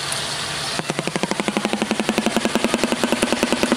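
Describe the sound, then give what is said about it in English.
A shoebill's rapid, machine-gun-like clattering, played from a video: about two dozen sharp, evenly spaced knocks over three seconds, following a brief wash of hiss. No voices are heard. “Back to that shoe bill. Yeah. The video is just running in my ear. Uh-huh. They make a dinosaur sound.”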